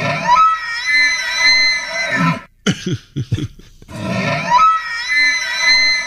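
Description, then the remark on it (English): An elk bugles twice, each call a long, harsh, high-pitched whistling scream, with a quick series of throaty grunts in the short pause between them. No one speaks. “Do you know what animal that is, and should we be worried? That's an elk.”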